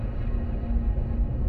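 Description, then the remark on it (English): A deep, steady rumble fills the space, heavy low-end energy churning continuously without breaks, like grinding or quaking building up, a rumbling noise coming from behind. “So, shortly after the guards leave, I would say around an hour or so, so not too soon after they leave, Glotar and Zavros, you start hearing a rumbling noise coming from behind you.”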